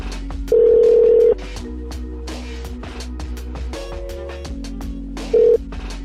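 An outgoing phone call: a loud steady electronic tone, then a low, continuous ringback hum with soft clicks, and a brief second burst of the bright tone near the end.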